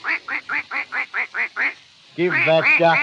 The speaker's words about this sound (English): Give that duck a ducking in the pond. What's it laughing at?